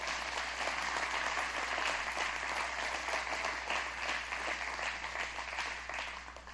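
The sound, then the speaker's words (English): A church audience claps their hands for Jesus in sustained, dense applause, many overlapping claps forming a steady loud wash that tapers slightly toward the end, with no speech over it. “Give Jesus a hand clap.”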